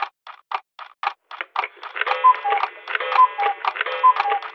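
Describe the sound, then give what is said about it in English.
A hacked digital clock ticks in a steady, even rhythm, clear. After a couple of seconds, a bright, sustained ringing melody rises over the ticking, which keeps going underneath. “Did you hack in the clock?”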